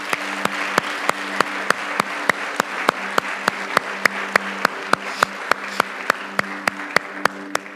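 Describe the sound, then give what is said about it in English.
A church audience claps hands in unison to praise the Lord, with a steady, brisk beat, roughly three claps per second, over a low murmuring room hum. Sharp, clear claps continue evenly from start to finish. “Now clap your hands and love the Lord.”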